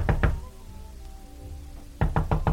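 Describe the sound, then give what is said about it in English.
Someone knocks on a door in a radio drama: two firm raps, a pause with faint background hum, then four more loud, evenly spaced knocks in quick succession. No one speaks. “If you don't open this door, I'm going to call the police.”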